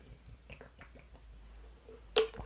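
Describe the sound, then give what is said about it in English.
Soft, wet sipping and swallowing of water come in a quick, faint series, followed a moment later by a single sharp click or clack. No one speaks. “All right, let me take a sip of water. Chug break.”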